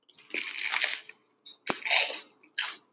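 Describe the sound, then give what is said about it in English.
Loud crunching as someone bites into toasted garlic bread, several dry crackly bursts in quick succession with short pauses between bites and no talking. “I know you hear that crunch.”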